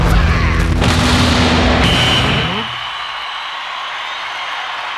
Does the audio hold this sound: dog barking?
no